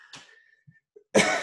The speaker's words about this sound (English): No COVID here. Just casual cough.